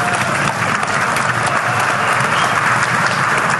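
Loud, sustained applause from a crowd, a dense steady wash of many hands clapping at once with no break for the whole stretch.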